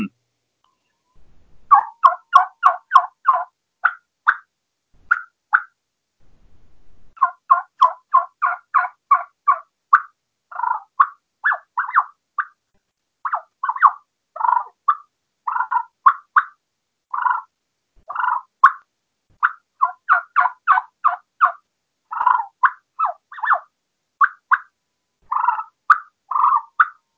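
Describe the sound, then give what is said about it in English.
A turkey call plays soft yelps, whines and purrs imitating turkeys easing along: runs of short, quick, mid-pitched notes in rhythmic bursts with brief pauses, steady and fairly quiet, with no talking. “Like so, just little soft whips and whines and purrs, and it's deadly on them.”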